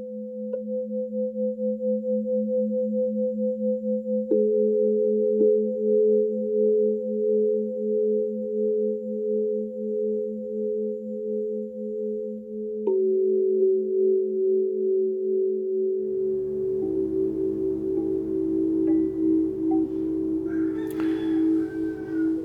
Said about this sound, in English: These tones are playing over my studio monitors, and these are from our mobile app called Solu. S-O-L-U.